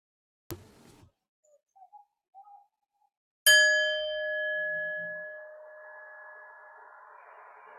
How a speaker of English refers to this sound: We sit in a minute of silence together, and I will ring the bells to finish our practice today.